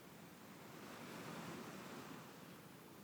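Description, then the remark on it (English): Ocean waves wash onto a beach in a steady, broad roar of surf that swells slightly in the middle, heard alone without any voices. “From the beach, you begin to hear those ocean waves.”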